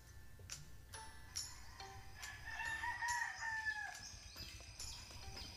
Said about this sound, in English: Roosters crowed, while chickens pecked the ground, hoping to find bits of kernels on the dusty road, and white, wispy clouds slowly crossed the sky over the town of Jericho.